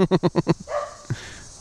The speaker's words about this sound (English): Dude, can this dog shut the fuck up? Holy shit!